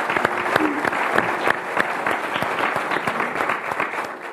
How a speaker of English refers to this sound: Now, if we could give our panel a round of applause for joining us tonight.